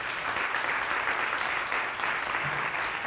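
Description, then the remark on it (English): An audience claps hands for the pastor in a steady, dense wash of applause that stays loud and even for about three seconds, with no talking over it. “Give Pastor a hand clap.”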